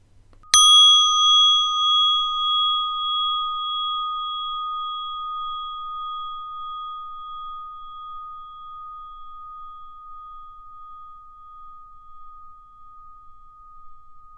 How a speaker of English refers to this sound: And at the sound of the bell, open your eyes and come back to the room.